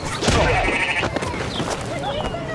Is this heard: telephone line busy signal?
no